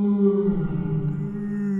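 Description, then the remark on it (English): A synthetic wolf howl sound effect plays from a buzzer button, a single long, steady moaning tone that holds its pitch and volume for nearly two seconds. “I got a wolf. Listen to mine.”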